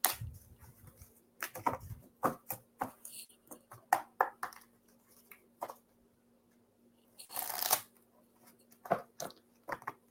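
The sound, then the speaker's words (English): Papery shuffling of a tarot deck: irregular soft slaps and flicks, then a longer riffling burst midway, more scattered taps after. No one speaks, and a faint steady hum sits underneath. “Just shuffling.”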